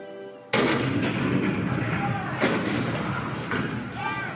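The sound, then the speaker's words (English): A sudden, heavy cannon blast at Fort Sumter on April 12, 1861, opens into a long roaring rumble, with further booming shots about a second apart, loud. Faint voices can be heard before and beneath the barrage. “The cannon spoke for war.”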